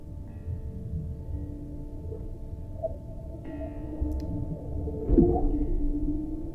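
Seal vocalizations: drawn-out tonal moans and hums over a steady low rumble, with a brief downward-sweeping call near the end that rises in loudness, then trails off.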